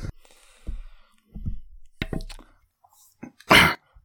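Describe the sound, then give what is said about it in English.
A fit of harsh, chesty coughing: several irregular bursts with short gaps between, ending in one loud, raspy, breathy cough. No one speaks. “Sorry, like, just had to, sorry, in the middle of that, I had to cough my lungs out.”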